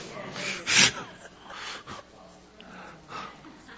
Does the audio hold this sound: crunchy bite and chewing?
no